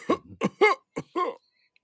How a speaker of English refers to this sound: I'm gonna try to rest and see if I can cough up any more of this blood out of my lungs.